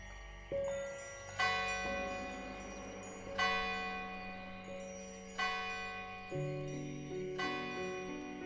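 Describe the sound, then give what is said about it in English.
Metallic wind chimes outside a church, moving in a light breeze, ring out in gentle, evenly spaced clusters about every two seconds, their bright shimmering tones lingering over a soft, sustained low hum, with no voices present. “Brasa could hear the wind chimes outside the church as they moved in the light breeze”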